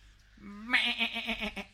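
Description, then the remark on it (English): A person's voice imitates a male sheep, giving one drawn-out, quavering bleat that pulses for about a second. It is fairly loud, with nothing else in the background. “I live with sheep, so meh.”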